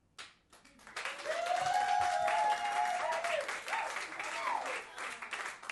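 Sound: audience applause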